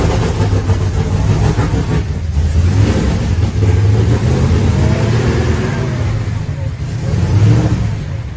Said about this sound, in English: Did you hear the pulley right there? Did you hear the Whipple pulley squeak at I was like, well, hey, hopefully they get it figured out and I hope the car runs good.